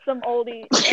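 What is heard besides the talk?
sneeze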